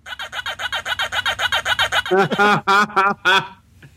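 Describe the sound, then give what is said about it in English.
A Pac-Man novelty sound-effect keychain is pressed and plays a rapid, even run of about fourteen short clucking pulses, then several louder, drawn-out squawking calls, clear with no talking. “But my favorite thing that's driving my family absolutely crazy with this is this keychain.”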